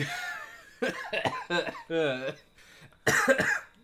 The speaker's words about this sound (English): Spicy cough.